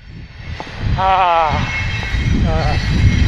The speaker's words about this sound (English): It's a train, guys. Got a train coming along. Just enjoy the sound of the train until it passes.